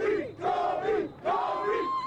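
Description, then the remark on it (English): A loud crowd of fans in Los Angeles cheers and shouts in celebration after the Lakers won the 2020 NBA championship, voices overlapping in sustained roaring surges with a brief dip before swelling again. “It was a night to celebrate in Los Angeles.”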